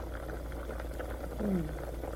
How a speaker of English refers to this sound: Oh, lots of boiling.